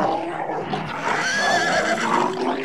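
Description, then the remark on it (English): A little white horse neighs loudly at night while holding a snarling wolf at bay to protect sheep in a sheepfold, a long, wavering whinny that rises and falls for a few seconds with no one talking. “There was a great, big, bad, snarling wolf being held at bay by the brave little white horse which was protecting the sheep in the sheepfold.”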